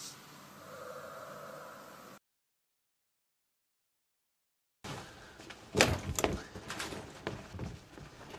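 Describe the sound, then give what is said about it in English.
A cat gives a drawn-out meow at a door, then after a short silence comes a burst of sharp bumps and rustling, like a door being handled. “Why are you meowing at my door? I heard you.”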